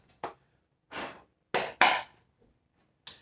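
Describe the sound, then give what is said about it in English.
A deck of tarot cards is shuffled for the main shuffle of a tarot reading for Leo, in several short, crisp bursts of papery riffling, separated by brief pauses, with no one speaking. “Let me go ahead and get to the main shuffle right quick.”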